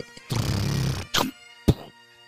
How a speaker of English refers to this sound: All right, that was a gunshot.